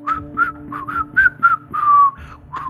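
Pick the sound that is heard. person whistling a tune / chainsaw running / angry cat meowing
person whistling a tune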